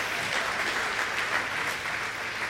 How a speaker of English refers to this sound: We're blessed, aren't we? So come on, give a bit of a round of applause for all of the dads.